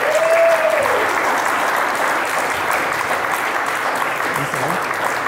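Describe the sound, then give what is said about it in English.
Sustained audience applause at The Art of Marathoning event during Marathon Week, welcoming runners Brett Robinson and Jack Rayner: a dense steady wash of many hands clapping at an even loudness throughout, with a brief high whistle near the start and no speech over it. “I'm not going to do massive introductions because we all know who these guys are, but a big round of applause for Brett Robinson and Jack Rayner.”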